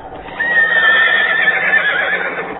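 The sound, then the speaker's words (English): The headless horseman's horse lets out a long, loud, high-pitched neigh lasting about two seconds, with a faint rhythmic clatter of galloping hooves underneath. No one speaks. “The headless horseman is supposed to be on the prowl here.”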